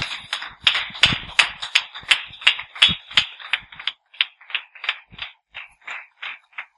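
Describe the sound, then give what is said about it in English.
A church audience claps together to welcome a pastor, in a steady, quick rhythm, loud at first, then thinning into lighter, evenly spaced claps toward the end. No voices are heard. “Let's clap”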